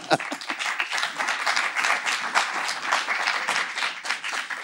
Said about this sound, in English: Pausing for applause.